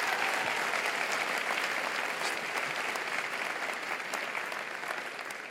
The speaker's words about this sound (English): We just heard from Colonel Schenecker, and I want everyone to just give him another big round. Give his son a huge round of applause.